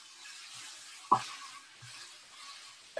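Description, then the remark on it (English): A steady, bright hiss of water sizzling in a hot pan runs throughout as a little water is added to bok choy cooking with spices and oil, to steam it. A sharp clack sounds just past one second and another right at the end. No one speaks. “And then I'll add water, not too much, but just enough to have a steaming effect.”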